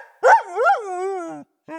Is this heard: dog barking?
yes